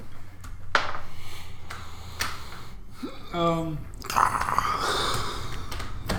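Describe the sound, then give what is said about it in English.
Scattered sharp clicks and clatters from dice tumbling, spread irregularly across several seconds, with a short hummed voice sound partway through and soft murmuring underneath. “This is the dice rolling sound.”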